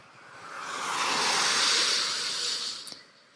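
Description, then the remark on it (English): A car passes on wet, rain-drenched concrete pavement, its tires giving a steady, rushing hiss that swells over about two seconds and then fades. Nobody speaks. “Every time a car passes on the wet concrete, I hear the word yes.”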